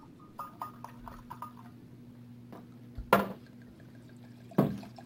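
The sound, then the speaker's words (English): Red wine, a 2018 Kalimna Shiraz, pours into a glass: a few soft clinks and drips, then two sharper splashy bursts of liquid against glass over a low steady hum, with no one speaking. “I don't know if I say this every episode, but I love the sound of wine pouring.”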